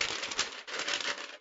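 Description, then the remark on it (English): Continuous rustling and crinkling as someone rummages through papers to fish out a paper, with small clicks and shuffles running steadily for a second or two with no voices. “Sorry, I had to fish it out real quick.”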